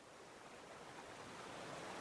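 Steady, hissing rush of clear water in a creek tumbling over hundreds of smooth rocks and a few small boulders as it cascades slowly down a hill beneath a small wooden bridge, continuous with no pauses or voices.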